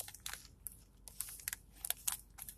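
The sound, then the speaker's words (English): Crisp plastic bag crinkling, a run of irregular rustles and sharp crackles over a couple of seconds as an Ars Magica book by Thomas M. Kane is slid out of it, with no talking. “Again, it's for Ars Magica, and if I can get it out of the bag, I'll talk about it here in a second.”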